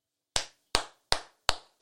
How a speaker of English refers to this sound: I'm going to clap my hands to myself.